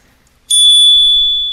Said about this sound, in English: Anyway, I have a solution to your problem. Cue the bell.